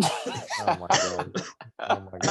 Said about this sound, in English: I actually started coughing.